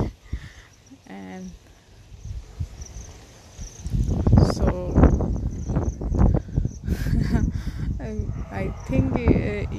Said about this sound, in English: You may hear a lot of breezing sound because the weather here is very windy, I would say, and it's very pleasant also. It's not only that it's windy, it's very pleasant also.